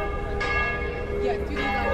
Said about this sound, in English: It's 8 p.m. on a Friday night. The bells of Diocletian's Palace Tower are ringing.